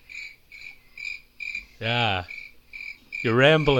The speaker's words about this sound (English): Sorry, was that a cricket noise that I... What?